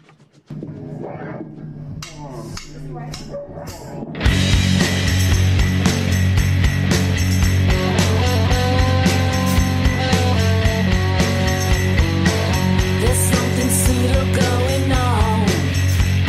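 A rock song opens with a sparse, choppy intro, then the full band crashes in after a few seconds, loud and dense, with driving drums and distorted guitars keeping a steady beat.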